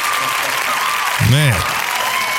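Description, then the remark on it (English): Steady audience applause on the live radio show Contractor Talk (iHeartRadio 94.1 FM WFLA, Orlando) fills the whole clip as a dense, even clatter of clapping, with a brief rising-and-falling voice-like tone cutting through midway. “But thank you for the applause anyway.”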